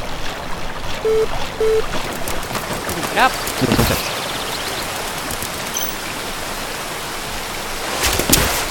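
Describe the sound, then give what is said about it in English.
A steady, broad rush of flowing river water fills the whole recording, with a person speaking briefly over it and a few sharp clatters near the end. “Slippery stone next to the river.”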